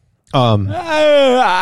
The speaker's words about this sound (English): Oh, I'm yawning.